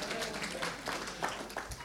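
A short, soft burst of audience applause: many hands clapping in a dense, crackling patter with a few sharper claps standing out, and no one speaking.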